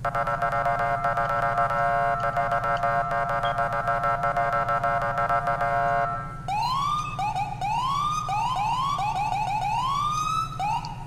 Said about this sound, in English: For those that are new, these are the sirens. I'm driving as Los Santos County Sheriff Speed Enforcement, and these are the sirens for the game that I use.